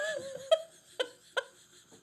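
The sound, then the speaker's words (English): A quick run of small, sharp sneezes, three or four abrupt bursts about half a second apart, each with a brief breathy, voiced tail, heard alone without talking. “Bless you.”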